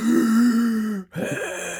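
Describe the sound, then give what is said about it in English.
A voice imitates heavy, mechanical mask-respirator breathing: one long, raspy, droning breath, a brief pause, then a second hoarse rasping breath, fairly loud with no other sounds. “I can't do like a mean breathing. Darth Vader.”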